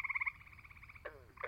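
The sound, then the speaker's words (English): A tiny green tree toad, about the size of a thumb, calls from up in a tree with a fast, pulsing trill that starts loud and fades, then breaks into another burst of rapid, whirring notes that swells back up, with no voices. “You can tell it's a tree toad because you'll hear them up in the air above your head twirling in some tree.”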